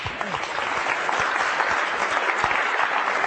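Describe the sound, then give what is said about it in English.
Steady audience applause, a dense wash of many hands clapping at an even, fairly loud level with no pauses throughout, welcoming Pauline Oliveros to give the keynote address, the final presentation of Listening in the Sound Kitchen 2003. “And without further ado, let's give her a welcoming applause.”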